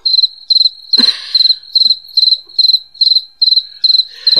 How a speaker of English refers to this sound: Look, crickets. Crickets.